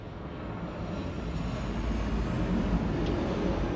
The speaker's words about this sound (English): I just want to say, as that plane passes over